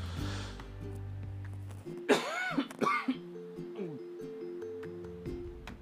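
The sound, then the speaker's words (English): A short fit of about three harsh, throaty allergy coughs, like clearing the throat, heard over steady, soft background music with no talking. “Here comes the allergy cough again.”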